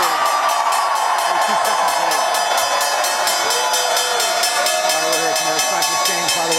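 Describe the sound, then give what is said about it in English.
A big crowd at a stock exchange bell ringing for a company going public via a SPAC deal: a loud, steady roar of cheering and shouting, with the bell clanging rapidly and evenly over it the whole time. “Big crowd here. Big crowd for this company.”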